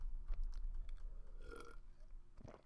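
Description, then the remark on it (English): Quiet mouth sounds of someone sipping water: a few small wet clicks, a soft slurp in the middle, and a swallow near the end, with no talking. “I'm going to take a little sip of this water”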